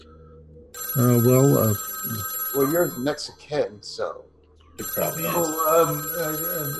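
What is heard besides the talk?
telephone bell ringing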